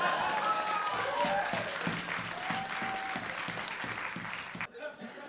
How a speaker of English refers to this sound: Hey, I got applause for that.